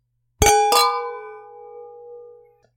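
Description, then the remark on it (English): Two quick glass clinks, a split second apart, as wine glasses touch in a toast, followed by a clear high ringing tone that slowly fades over about two seconds. No voices. “Well, let's cheers and try these wines.”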